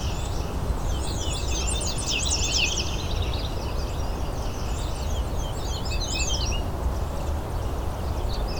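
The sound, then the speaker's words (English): A ruby-crowned kinglet sings two bursts of high, rapid, tumbling notes, the second somewhat fainter, over a steady rushing background noise with no one talking. “There's the ruby-crowned kinglet.”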